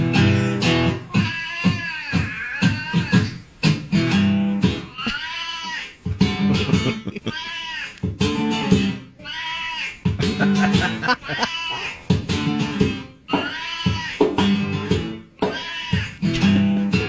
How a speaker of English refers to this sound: Now, not every cat has the chops to sing the blues. That is a guitarist and his cat named Bruce doing a call and response blues riff.